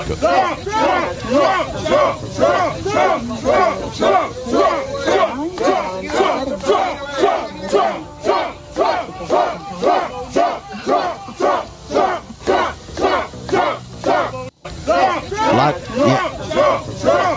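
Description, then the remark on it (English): A large crowd in Fulton County chants and shouts in a loud, steady rhythm as Donald Trump arrives to turn himself in, many voices rising and falling together in repeated bursts with a brief dropout near the end. “But listen, look at the group in Fulton County as he arrives to go turn himself in.”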